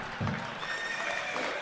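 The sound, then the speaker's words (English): A horse whinnies in a single drawn-out, wavering neigh with high tonal bands over a low thump near the start, fairly loud, with no talking. “The horse of truth has been activated.”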